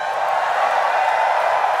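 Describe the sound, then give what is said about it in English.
A real live audience at a recording cheers and hollers, not a laugh track: a steady, dense wash of crowd noise that holds at an even, fairly loud level for the whole stretch, with no single voice standing out. “So for those, we're recording live in front of an actual audience. There are real humans here. There is no laugh track.”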